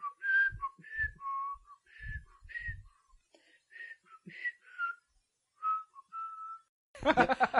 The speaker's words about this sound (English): Like I'll whistle things, specifically the Condor Man theme.